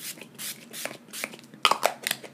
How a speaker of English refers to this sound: All right, so I'm gonna spray my face with the Urban Decay All Nighter Setting Spray just to like lock in my concealer and foundation.